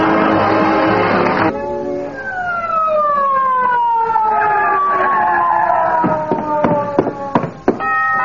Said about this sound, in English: Somebody here call for an ambulance?